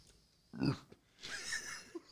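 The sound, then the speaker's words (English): A short, throaty burp rumbles out, followed by a breathy, hissy exhale and a faint click, with no talking. “That was a good burp, too.”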